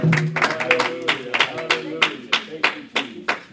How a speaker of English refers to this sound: I think our chorale group did an awesome job. Let's just give them and the Lord a big hand clap of appreciation.